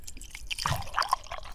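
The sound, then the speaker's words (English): A short coffee-pouring sound effect that opens a 'morning coffee' segment: a bubbly, gurgling trickle of liquid with a few brighter splashy blips midway, heard on its own without any talking. “Let's start with the morning coffee”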